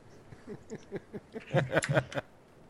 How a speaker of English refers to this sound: You have to record the loud typing every time you answer.